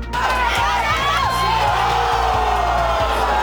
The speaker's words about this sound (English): The rush, the nerves, the cheers and moans as British Columbians take in what's being called the greatest final ever.